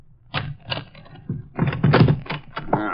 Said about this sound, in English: Let me in. Wait a minute till I unlock the door.